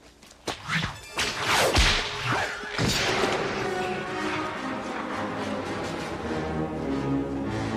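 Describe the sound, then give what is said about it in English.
A series of sharp cracks and swishing lashes of Indiana Jones's whip in the first few seconds, loud, followed by a sustained sweeping whoosh that lingers with a bright, airy tail. “I gotta go with Indy's whip.”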